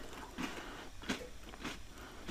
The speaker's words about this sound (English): But for these shortbread cookies, right after I make that first initial like bite, it crunches, but it's already soft. It's not like a hard crunch anymore.